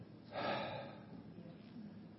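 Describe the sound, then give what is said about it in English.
A voice imitates a woman's big, deep gasping breath taken after she had been breathing fast, a loud breathy inhale that swells quickly and then trails off into quieter breath noise. “And when I was done, she had been breathing kind of fast. And then I was done, she just took this big”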